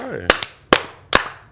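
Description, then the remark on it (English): Five sharp, loud hand claps in an uneven rhythm, the first two quick together and the rest more spaced out, after a brief bit of voice at the start. “Do five claps.”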